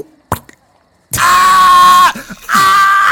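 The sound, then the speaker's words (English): A man lets out two loud, strained screams of pain after a longsword cleaves down and gets stuck in his shoulder, the first drawn out for about a second, the second following after a brief gasping pause, preceded by a short sharp click. “He screams.”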